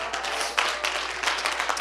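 A crowd claps together in steady, dense applause, a continuous wash of many hands with no voices standing out above it, standing to give God a hand clap of praise.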